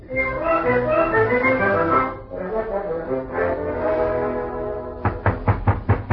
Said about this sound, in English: I was potting around the bedroom, and there was a knock at the door. The wardrobe door.